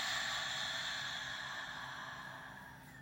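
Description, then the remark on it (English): A long, slow breath drawn in through the nose during a guided breathing exercise, a soft airy hiss that holds steady for about three seconds and gradually tapers off, with no talking. “So let's take a deep breath in through our nose.”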